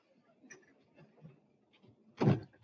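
elevator door closing

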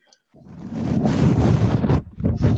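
microphone falling over

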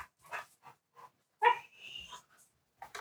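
dogs barking and whimpering

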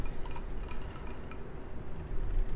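glasses clinking

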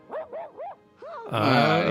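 dog barking on command

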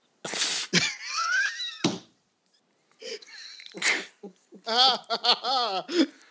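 sneeze

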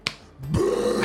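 burp

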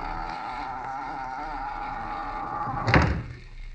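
door being shut

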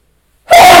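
sneeze

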